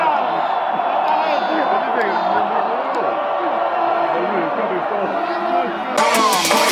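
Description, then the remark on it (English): A large football stadium crowd of fans roars and cheers steadily as the opposing side gets a booking for a goal celebration, a dense, loud wall of voices that swells into a brighter burst near the end. “I think we're cheering them getting a booking for the goal celebration.”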